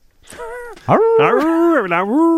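A dog gives a few loud, drawn-out barks that bend into whiny, howling tones, one after another with no pause between them.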